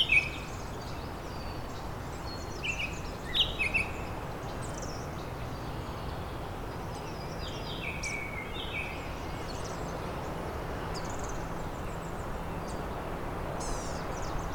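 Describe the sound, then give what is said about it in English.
A blue-gray gnatcatcher gives thin, high, wheezy call notes, repeated in short scattered bursts among other faint bird chirps over a steady hiss of background noise. “There's the blue-gray gnatcatcher.”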